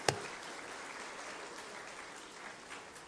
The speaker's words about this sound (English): Well, let's give the youth praise team again another round of applause.